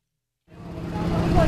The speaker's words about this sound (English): On a blustery spring day at Fort Sam Houston, a line of cars idle with their trunks open, waiting as volunteers unload boxes of food from a semi parked nearby.